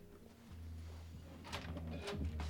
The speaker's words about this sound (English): I think you should knock on the door because these arms are nice and warmed up.